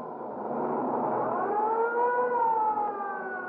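ambulance siren sound effect

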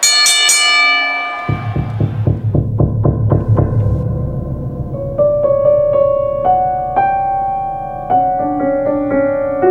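bell ringing

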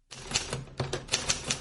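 typewriter keys typing

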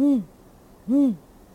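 owl hooting

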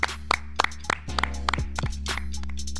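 hand clapping

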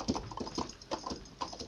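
horse hooves clip-clopping away

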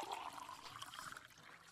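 water poured

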